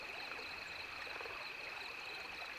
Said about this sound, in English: We return to the Cottonwood Campground. The wind dies down and crickets begin calling at dusk.